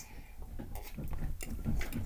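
Glasses clink together in a toast to Kenny Omega's health and speedy recovery, a handful of bright, sharp taps spread unevenly over two seconds, with a low murmur of background noise underneath.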